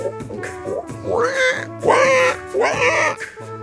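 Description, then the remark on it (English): Someone imitates a pig with their voice, making three loud, nasal, squealing oinks in quick succession, with nothing else in the background. “How about a pig?”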